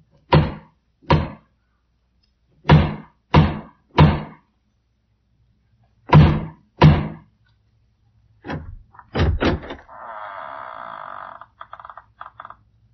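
Loud, heavy knocks on the massive wooden door of the House of Usher, struck in slow groups of two and three with pauses between, then a few more thuds and a long creak as the door swings open.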